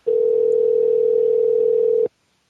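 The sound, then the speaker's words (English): A telephone tone on an outgoing call to a phone caller: one steady, loud, unwavering hum lasting about two seconds, then cutting off abruptly into silence. No one speaks. “All right, we're adding a phone caller, and he'll be up.”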